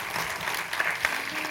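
A crowd applauds steadily, a dense patter of many hands clapping at an even, moderate loudness with no voices standing out.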